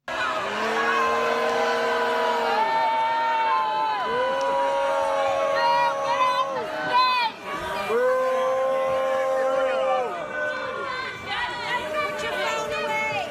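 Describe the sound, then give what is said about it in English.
A theater crowd boos loudly and continuously as a woman is pulled off the stage, many voices holding long, low, wavering "boo" tones that overlap and swell, with a brief dip before the jeering rises again. “Everyone's booing and they're pulling her off the stage.”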